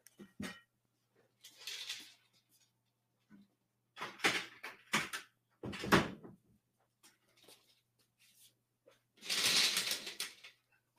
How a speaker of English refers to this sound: And I may have to close my door so I don't hear that.